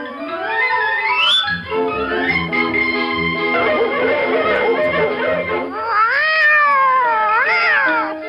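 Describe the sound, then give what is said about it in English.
A white kitten chased up a tree by a dog meows loudly, a run of drawn-out, wavering cries that rise and fall in pitch, continuing without pause and with no talking. “Dog has got a white kitten up a tree.”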